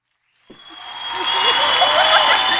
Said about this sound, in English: We're just gonna give a clap, man.